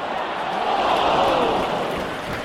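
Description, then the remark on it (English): A huge stadium crowd of football fans at the World Cup roars and cheers in a dense, continuous wash of noise, holding steady and loud for a couple of seconds with voices blending into one another. “On to our main topic for the week now, and although it's now World Cup curtains for England, we couldn't turn our back on one of the biggest international sporting events and its millions of cheering fans.”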